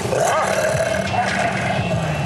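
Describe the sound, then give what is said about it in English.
A pack of wild dogs mauling a person: loud, continuous snarling and growling, with layered harsh roars overlapping and no pauses for a couple of seconds. “The pack of wild dogs are mauling me.”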